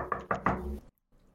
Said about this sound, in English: I think I'm going to quickly head to the our commanding officer's door. Loudly knock.